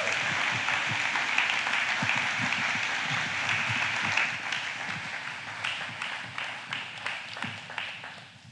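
A crowd bursts into sustained applause for a woman who has just shared her story, dense and steady at first, then thinning into scattered individual claps that slowly fade out near the end.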